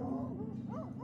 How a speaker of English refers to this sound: The dogs still haven't left the damn door. They found my windows yesterday. their snouts pushed up against the glass.